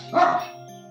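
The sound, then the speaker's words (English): A dog lets out one short, harsh bark, fairly close and loud, rising briefly out of a steady low background hum before fading away. “A nearby dog clocks you guys. And it starts growling and barking at Finn.”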